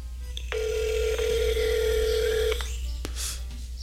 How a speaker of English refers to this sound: So let's see if he can. Let's see if he pick up the phone.